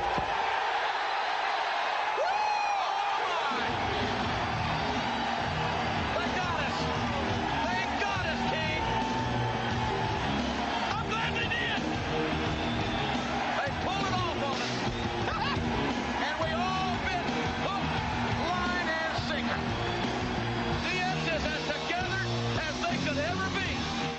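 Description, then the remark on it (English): A dense, steady roar of a wrestling crowd and commentators reacting and yelling as China pulls her pants down to expose her thong to the crowd, with overlapping voices and babble that stay loud throughout, filling the whole stretch after a brief quieter opening. “as you can tell from the reactions of the commentators and the crowd”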